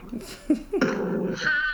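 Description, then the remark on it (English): A male dog growls low and steady, the rumble rising into a short, higher-pitched whine near the end. No one speaks. “Her dog has an attitude. He's not liking our show tonight.”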